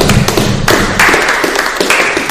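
A few people clap their hands together in a quick, steady burst of sharp claps, loud and close, lasting a couple of seconds with no talking.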